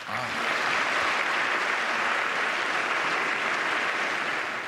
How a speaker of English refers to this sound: Yes, an idea worth standing and applauding for.